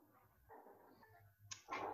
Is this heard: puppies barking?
yes